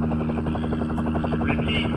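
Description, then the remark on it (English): A Coast Guard helicopter flying overhead off Cape Barrows, its rotor beating out a fast, steady thumping pulse with a droning engine whine, loud and unbroken for the whole two seconds. “That's an incredibly good sound system out of that helicopter.”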